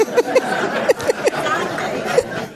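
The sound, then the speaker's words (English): A live audience at the Grand Hotel of Cape May, New Jersey, chatters in a steady, overlapping murmur of many voices, with brief higher-pitched exclamations and bits of laughter popping out above the babble. “What an awesome crowd.”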